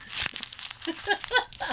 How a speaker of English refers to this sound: He's crumpling up paper to throw at me.